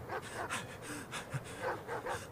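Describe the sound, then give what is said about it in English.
Dogs, just released from a cage, pant hard and fast as they chase people across open desert, each breathy rasp coming in a quick, steady rhythm, moderately loud with no talking. “the dogs spring from the cage and speed off after Rebecca and Kyle in a fevered frenzy”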